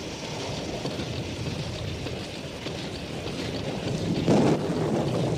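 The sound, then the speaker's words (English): The engine of the boat the African Queen, in the film The African Queen, starts and rumbles steadily and loudly throughout, mixed with wind and water noise, with a brief surge near the end; no one speaks. “Start the engine, Charlie.”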